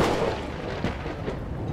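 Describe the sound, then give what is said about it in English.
A loud thunder clap with a flash of lightning rumbles heavily through the low end, a deep sustained roar with a couple of sharper cracks inside it and no voices. “Flash of lightning and loud thunder right when you say that.”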